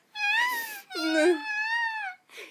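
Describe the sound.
A voice imitates a baby whimpering, with two drawn-out, high, wavering cries and a brief third starting at the end, moderately loud and without any words.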